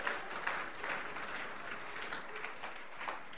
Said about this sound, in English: Go ahead and give a clap of praise to the Lord.